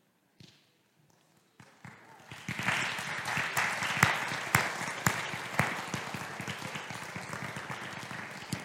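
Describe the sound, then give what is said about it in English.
Audience applause honoring the fathers standing in the audience starts with a few scattered claps, then swells into steady, dense clapping from many hands that holds at a moderate level until the end. “And I know, I'm sure you noticed as well as I, that the applause was much louder for mothers on Mother's Day.”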